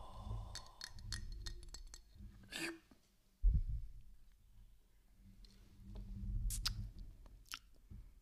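A glass beer bottle clicks and taps against teeth for ASMR, a series of sharp, irregular little clinks with a heavier knock partway through and soft mouth noises between, no talking.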